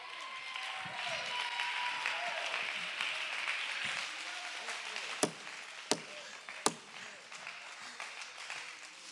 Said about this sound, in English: That's why the devil don't like it when we clap our hands.